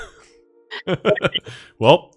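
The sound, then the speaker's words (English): A person imitates a dolphin with a quick run of short, breathy, cough-like vocal bursts, fairly loud, ending in one stronger squeaky call. “should have done a better dolphin impression.”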